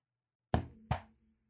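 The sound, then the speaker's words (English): Two firm knocks on a door for the game Who's at the Door?, resonant, spaced less than half a second apart, each with a short woody thud that fades quickly into silence. “Can you please give us that knock again?”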